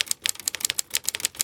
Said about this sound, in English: I'm typing like somebody who doesn't know how to type, because it's insanely more difficult to press the keys down on a typewriter than on a computer keyboard.